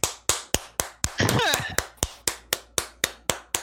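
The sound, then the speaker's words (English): Steady hand clapping, about a dozen sharp claps at an even, fairly quick pace, with a short vocal outburst breaking in partway through before the clapping carries on. “I'm clapping.”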